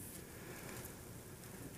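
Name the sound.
bible pages turning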